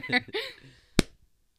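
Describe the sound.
A single sharp, loud hand clap, done together at the start of a discussion of the film The Menu, rings out after a moment of voiced vocal sounds, followed by a brief, quickly fading tail and then silence.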